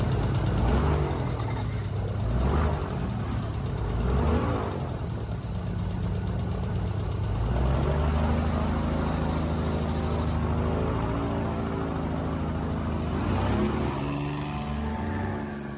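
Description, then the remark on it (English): An airboat propeller whirs loudly and steadily behind its protective metal cage on a shallow boat, a continuous droning roar with shifting engine tones and no voices. “sat back to back on the gutted floor of the shallow boat as the loud propeller whirred behind its protective metal cage.”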